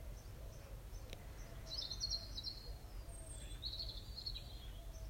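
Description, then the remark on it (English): Small birds chirp and twitter in short, high bursts in a garden, over a steady low rumble of outdoor background noise with faint traffic. “Imagine you're lying down on the grass, and all around you you can hear insects and birds.”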